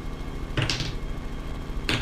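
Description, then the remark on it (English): Dice clatter in two short bursts, a longer rattle followed by a brief second one, over a quiet background with no one talking. “Roll me some bear dice.”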